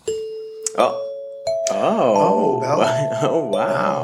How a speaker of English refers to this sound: Bell.